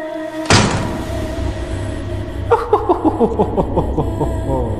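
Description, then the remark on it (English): A sharp metallic clunk like a lock releasing as a key unlocks the door of a spaceship, then a low rumble as the heavy door opens, followed by a rapid series of rhythmic, grinding mechanical pulses. Fairly loud, with no voices. “Then open the door.”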